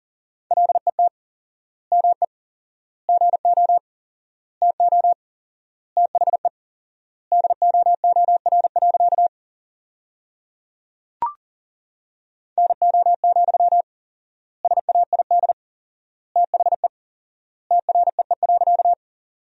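Morse code practice at 40 words per minute with 4x word spacing, sending sentences from the top 300 words: rapid beeps in a single steady mid-pitched tone, keyed into quick bursts of dots and dashes with pauses between words, plus one sharp click midway through the gap.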